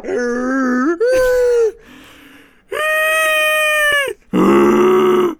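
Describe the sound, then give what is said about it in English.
A voice imitates a squeaky office chair with about five loud, drawn-out whiny squeals and groans. Some bend upward in pitch and one is softer and breathier, with short gaps between them. “But boy, oh yeah, it's been making some squeaky noises again. I desperately fucking need to get a new chair.”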